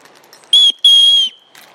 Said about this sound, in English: Come on, Louis, we're going this way. I think I'm going to blow the whistle, then I'll let you see. Come on, you lovely dog.